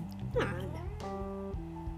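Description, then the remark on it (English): A cat that has just jumped onto a sofa lets out one short, drawn-out meow that rises and then falls in pitch, fairly loud, with a steady humming drone continuing in the background afterward. “My cat jumped on the sofa.”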